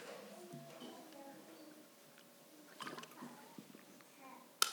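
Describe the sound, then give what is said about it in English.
Quiet sloshing and splashing of water being moved around, with a few soft wet bursts midway and a sharp click near the end, set against a faint room hum. “Bring some water here.”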